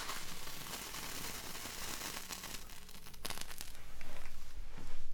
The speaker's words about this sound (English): Oh, nice. The sound of candle lighting. A little crackling in the wax.